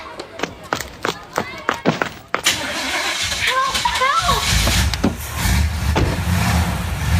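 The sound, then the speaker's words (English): A few sharp footstep-like taps, then a car engine starts up and settles into a steady low rumble as kidnappers start their car while abducting a girl, whose high voice cries out for help as it kicks in. “Okay, you grab her and I'll get the car started.”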